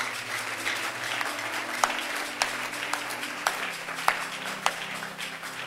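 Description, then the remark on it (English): A church audience claps for itself at a preacher's prompt during a sermon, a dense, steady patter of applause, with a few sharper, louder claps standing out every half second or so over the continuous wash. “The clap did not come like.”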